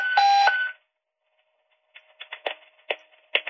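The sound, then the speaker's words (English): A loud, steady electronic alert tone from an Ocean Beach Fire Department radio test on Fire Island sounds for about half a second, then goes quiet before a series of short, scratchy radio bursts. “Okay, so that's a radio test going on.”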